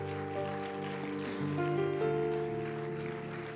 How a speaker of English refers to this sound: Would you clap your hands unto the Lord again? Let's give them a round of praise.